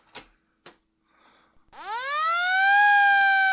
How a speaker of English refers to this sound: We got breaking news. We need like a more of a siren that's like a siren for like an alert that's like a police siren. But that's breaking news.